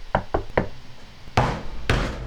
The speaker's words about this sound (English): Let's go to the School of Evocation guy. You knock on the door, I guess.